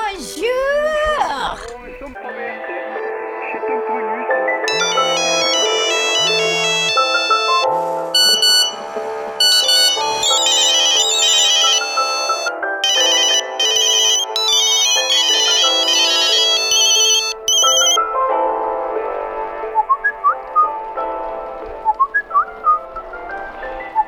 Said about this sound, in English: Oh wow, so many notifications. I'm being notified. I guess they all must be important.